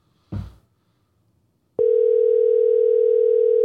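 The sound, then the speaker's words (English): A short clatter like a handset being picked up, then a loud, steady telephone ringing tone on an outgoing call to an old phone number starts and holds unbroken to the end, with no voices. “This is an old phone number. I don't know if this is going to work.”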